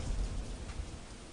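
Steady rain hisses across the whole stretch, with a deep, low thunder rumble rolling underneath. No voices, just the continuous wash of the storm.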